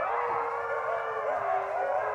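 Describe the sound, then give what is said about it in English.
A wolf, Diego, lets out a long, unbroken howl, a steady mournful tone held at full strength for the whole stretch with only a slight waver in pitch. “Diego's howl I can pick out, and he's very soulful.”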